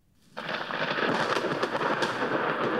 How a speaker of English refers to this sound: Like, you're just hanging out in the middle of town. It's raining. There's some thunder.